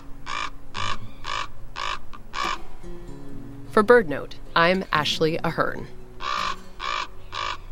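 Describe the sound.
A crow caws loudly in a series of harsh, evenly spaced calls, five in a row, then pauses while a woman speaks briefly before three more raspy caws follow.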